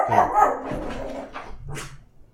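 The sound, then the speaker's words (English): A small dog barks at a neighbor walking by in a quick burst of sharp, yappy barks, fairly loud, tapering off with a few softer yips. “There's a neighbor walking by. My little dog is mad at him for walking, as he usually is.”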